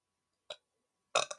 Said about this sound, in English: Not when you burp, though. Yeah. Yeah, ma'am, when I burp.